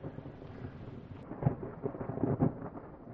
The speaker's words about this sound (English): I'm going to get out of this thunderstorm, but I hope you'll catch me next time when I go explore Beaver Lake.